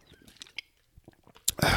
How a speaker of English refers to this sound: Let me just take that nice sip of water.